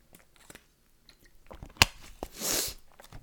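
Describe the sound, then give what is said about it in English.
Someone sips a drink of water: soft mouth noises, a sharp click, then a short airy slurp and a swallow, with no talking. “Let me get some water really quick.”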